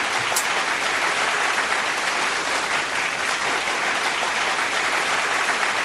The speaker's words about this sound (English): Hey, you guys, if you hearing those claps, they're actually the claps for Mario's Magic Mixtape with Tyrone Dubois